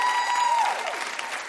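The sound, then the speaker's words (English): A game show studio audience applauds steadily for Power actors Omari Hardwick and Naturi Naughton, a dense, loud wash of clapping for the whole moment, with a brief tonal sweep rising over it early on. “Give it up one more time for Omari Hardwick Thank and y'all.”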